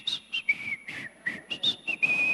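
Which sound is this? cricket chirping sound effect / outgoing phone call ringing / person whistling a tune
person whistling a tune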